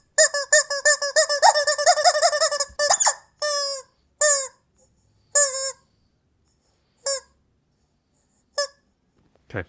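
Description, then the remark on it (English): Chickens squawk loudly close to the microphone, a rapid burst of shrill, overlapping calls that thins into a few spaced, separate squawks, with no talking. “Hear the chickens kiss. By the way, through your microphone.”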